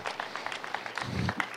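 A short burst of audience applause: many hands clapping in a quick, uneven patter at moderate loudness, with a low rumble of murmuring underneath toward the end.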